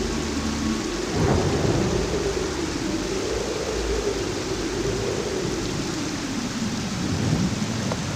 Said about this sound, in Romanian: Ploaia a coborât din nori peste ei. Aceasta era ceva ce ei nu mai văzuseră niciodată. Furtuna creștea în tărie până ce se părea că apa vine din ceruri în torente puternice.